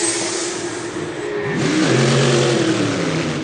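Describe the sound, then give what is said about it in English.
Racing cars roar past on a circuit during a TCR touring car race, engines revving hard with rising and falling pitch as they accelerate by, loud, with no voices. “Now, that is battling in TCR. And is that the 101 car about to be overtaken by AC Motorsport?”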